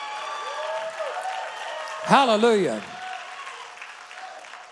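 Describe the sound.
An audience claps steadily in a dense, continuous patter while a loud voice rings out with a single exultant shout midway, rising above the applause before it settles back.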